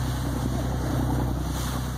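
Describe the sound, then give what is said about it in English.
A steady low engine rumble drones on, with wind and water noise washing over it, as a fishing boat motors across the open ocean. No one speaks. “Making a living at sea has many challenges, but out there on the water with the open ocean surrounding you?”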